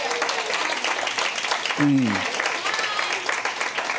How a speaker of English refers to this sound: can y'all clap on this?